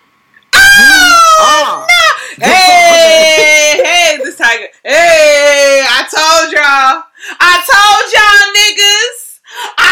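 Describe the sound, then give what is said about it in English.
A four-month-old baby screams loudly, in long shrill wails broken by short gasping pauses, filling nearly the whole stretch without letting up. “trying to talk over the bitch screaming in the background.”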